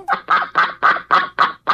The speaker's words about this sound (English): 11 baby ducks fell into a storm drain in California last week, and an animal control officer managed to coax them out by playing duck sounds of a different mother duck on his cell phone.